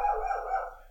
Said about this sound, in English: Oh, dog going off.